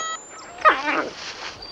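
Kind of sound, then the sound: animal, dog whimpering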